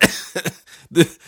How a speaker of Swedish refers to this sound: Förlåt, jag är lite hostig.